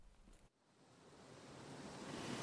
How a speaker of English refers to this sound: You come across this waterfall really quite by surprise. This is Glenevin Waterfall, a 40-foot high cascade of white water which shoots off the lip of the rock at the top of the hill and comes down in one long, steady stream all the way down